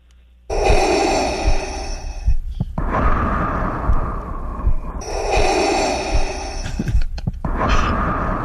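Loud snoring through an open mouth from a sleeping person: two long rasping breaths, each a strained inhale followed by a rougher exhale, repeating in a slow rhythm with no talking.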